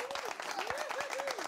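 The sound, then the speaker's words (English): The audience at the Callaway Live show applauds steadily, many hands clapping in a dense, continuous patter, with a faint rising-and-falling tone running through it. “Yeah, applaud again.”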